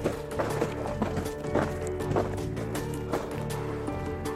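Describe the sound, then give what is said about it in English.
Footsteps crunch through snow in a forest at night, right outside a tent, at a slow, steady pace, roughly two steps a second, each crunch distinct over a low, sustained droning tone underneath. “The sound of footsteps in the snow is terrifyingly clear.”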